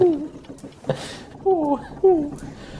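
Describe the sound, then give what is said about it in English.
A person mimics an owl's hoot, giving a few wavering, rising-and-falling vocal calls in short bursts, fairly loud, with no words spoken. “You need a response to that call. I couldn't let that go unanswered.”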